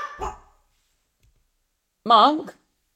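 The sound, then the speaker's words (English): A dog barks twice, a short rough bark followed about two seconds later by a longer, higher, wavering bark, both fairly loud with silence between. “He's barking his head off for no reason.”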